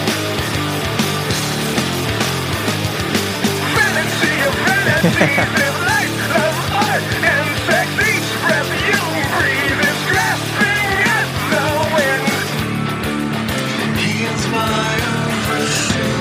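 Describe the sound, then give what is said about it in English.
A loud, aggressive 1990s rock song plays continuously, with dense distorted guitars, pounding drums and a harsh, shouted lead vocal riding on top at a steady, driving intensity. “This is a … ripoff.”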